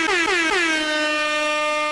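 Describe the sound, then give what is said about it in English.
A loud air horn blares, opening with three quick stuttering blasts before settling into one long sustained, brassy tone that holds steady to the end. “Just in case in point, and I think I can do it one last air horn.”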